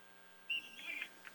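A referee's whistle at a soccer match involving Heuvelton gives one shrill, steady blast lasting about half a second, faint against a quiet background hum, with no one speaking.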